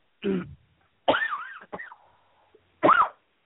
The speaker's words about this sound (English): Sorry, yeah, you hear me coughing. I'm sorry about that.